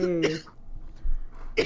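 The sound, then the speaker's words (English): Two short, rough coughs from a hoarse person, about a second apart with near-quiet between them. The first starts with a brief throaty, voiced rasp. “Excuse my coughing.”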